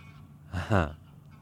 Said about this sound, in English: There are geese over my head.